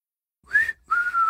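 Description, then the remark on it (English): A person whistles two short tones, the first rising then falling, the second a steadier held note, clear with a breathy edge and no talking. “That's my miserable whistle to say that we're back.”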